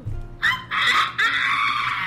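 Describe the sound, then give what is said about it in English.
A person gives a loud, shrill imitation of a rooster crowing, delivered as three strained, high-pitched vocal bursts in quick succession, with no talking over it. “That's the rooster sound waking us all up.”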